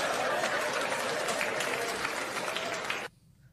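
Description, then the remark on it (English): Loud, dense applause from an audience, a steady wash of many hands clapping for about three seconds before it cuts off abruptly into near silence. “Listen to the applause.”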